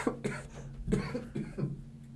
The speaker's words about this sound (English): Just got attacked by coughs. Holy shit. Oh, man.